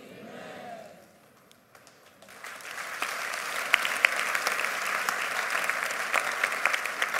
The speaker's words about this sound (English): Good. Turn to that person by you. Ask him, did you understand why you clap your hands?